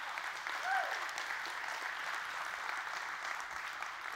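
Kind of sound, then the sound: crowd, audience hand clapping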